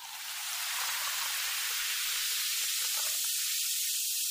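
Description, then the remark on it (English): A small amount of liquid poured onto the floor sets off a bright, steady sizzling hiss that swells in within the first half second and holds unbroken for about four seconds, with no voices. “See, I pour a little on the floor.”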